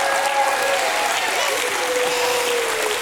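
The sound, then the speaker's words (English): An audience claps their hands in a steady, loud wash of applause that fills the whole clip, with faint sustained tones and cheering voices drifting through underneath. “Give me my hand clap.”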